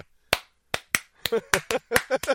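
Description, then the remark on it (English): A run of sharp hand slaps, about nine in all, spaced out at first and then coming quicker, with short vocal sounds mixed in among the later smacks. “I'm going to start slapping her titties.”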